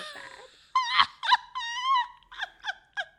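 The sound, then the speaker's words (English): A voice imitates a foghorn with two drawn-out, fairly high, nasal honking tones followed by three short, quick hoots, with no other sound around them. “I don't know exactly what a foghorn sounds like apart from like a big...”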